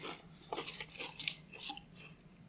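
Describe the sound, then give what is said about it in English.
Crisp, crackly bursts of crunching on pizza-flavored Pringles potato chips come in an irregular series of bites and chews, bright and sharp, with brief pauses between them and no talking. “I don't like the crunching sound in front of the mic either.”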